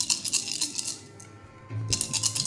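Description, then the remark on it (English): Eight-sided dice (D8s) clatter and rattle across a hard tabletop in bright, rapid clicks, pausing briefly before another burst of rolling and tumbling; no one speaks. “Yeah, give those D8s some breathing.”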